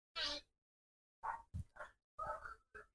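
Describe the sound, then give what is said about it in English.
Dogs bark in the distance, a series of about six sharp, irregular barks with short pauses between them, fairly faint and with no talking over them. “Hear those dogs again? Unbelievable. Those dogs are, yeah, that's they're not happy at all.”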